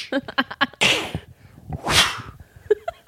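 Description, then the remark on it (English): A voice mimics traps snapping shut, like a spiky board being triggered: a quick run of clicks, then two loud hissing whooshes like sprung mechanisms, ending with a few small pops, unaccompanied by talk. “No, it's like a spiky board being triggered.”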